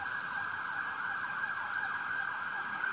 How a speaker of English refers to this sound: The timing of these sirens is interesting. I mean, not to make light, I know we pray God speed them on their way to whoever's in need.